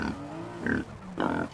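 A boar gives two short, throaty grunts, each a brief nasal burst with a low rumble underneath, separated by a half-second pause.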